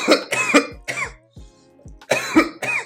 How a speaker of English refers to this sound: Deadass looking at the joint just made me cough.